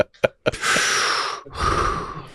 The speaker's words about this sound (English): And then there's heavy breathing, which some of you may hear us doing as we get close to the microphone.